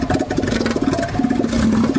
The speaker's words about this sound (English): Is that a hippo, a seal, or a crocodile? Seal. The correct answer is that is an elephant seal.